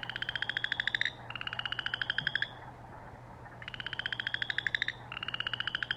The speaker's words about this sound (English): It's actually a frog. Well, it is that time of year, early spring.